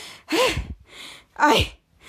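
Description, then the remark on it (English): A voice imitates the character Jasper's out-of-breath panting with two loud, breathy, voiced huffs spaced about a second apart, with brief quiet between them. “And they got interrupted by Jasper, who got interrupted in the store, and he's panting.”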